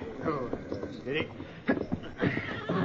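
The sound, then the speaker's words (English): A horse neighs, a loud, wavering whinny with a few shorter snorting bursts before rising into a long, quavering call near the end. “And here's the horse that carried him.”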